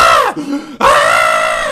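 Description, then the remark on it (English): A woman screaming in her sleep lets out a loud, high-pitched scream, breaks into a brief low moan, then screams again in a long sustained wail with no other voices. “But you basically hear her screaming.”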